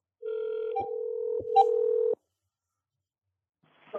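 A steady telephone tone lasts about two seconds, broken by a few short dialing blips and clicks. It cuts off into silence, and a faint voice begins at the very end.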